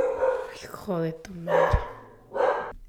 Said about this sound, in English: the Amazon guy came by, the FedEx guy came, and it was like one after the other, and all you can hear is my dog yapping. My dog Bo, he just keeps on barking and barking.